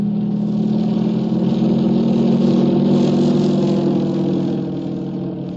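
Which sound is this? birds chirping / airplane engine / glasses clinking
airplane engine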